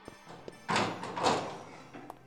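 A door opens with a solid clunk followed by a second rattling thump, framed by a few light clicks of the handle, as a guest arrives for a feast; no one speaks.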